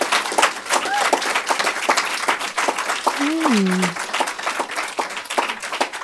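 Audience applause: a dense, steady clatter of many hands clapping for about six seconds, with a falling vocal whoop rising briefly above it midway through.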